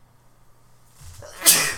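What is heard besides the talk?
sneeze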